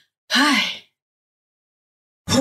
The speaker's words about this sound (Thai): เพราะฉะนั้นทำอย่างไรก็คืออย่างรู้ตัวค่ะออกเสียงลมหายใจให้ยาวขึ้นถ้าเกิดอาการรนรานให้ถอนหายใจอย่างรวดเร็วทางปาก